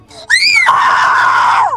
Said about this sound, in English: Obeying Julius's command, the quasi-spirits continually fired the scorching light. With Capella's piercing scream serving as background music